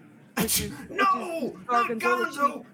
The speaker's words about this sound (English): His schnoz is gonna be as big as my schnoz because I'm sneezing and rubbing my nose so much.